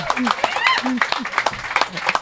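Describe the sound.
An audience claps in a quick, dense patter with whoops and cheering voices mixed in, lively and fairly close throughout.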